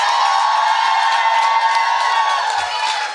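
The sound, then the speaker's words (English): A crowd roars with sustained cheering, whoops and applause for the producer Big Cats, loud and steady throughout without a break. “Like, I want you all to make a lot of noise for our producer, Big Cats, right now.”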